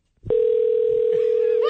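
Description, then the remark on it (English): A steady telephone dial tone begins abruptly and holds at an even, fairly loud level, with faint background voices creeping in toward the end, as a call is placed from the Sports Illustrated swimsuit photo office to a mother in Conehanga Lake. “So here's the second phone call from the Sports Illustrated swimsuit photo office to my mom in Conehanga Lake,”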